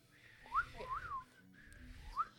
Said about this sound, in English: Actually, I have these things on, like, the back of my teeth that I need for my braces, and I actually think that's causing me to stop whistling.